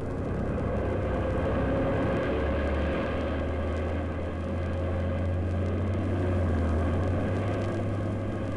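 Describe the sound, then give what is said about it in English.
A propeller airplane's engine drones steadily, a loud low throbbing hum with a broad roar over it, the pitch climbing slightly partway through as the plane takes off. No voices. “You were hired to pilot this plane, and that's all. So get the plane off the ground.”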